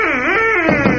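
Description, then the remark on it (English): A duck call is blown once, a loud, nasal reedy tone that slides slightly in pitch before breaking into a rougher, raspy quack near the end. “That noise was a duck call”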